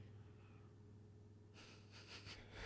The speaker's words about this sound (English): And she starts off with breathing technique, breathing through your nose. Feel your lungs fill up.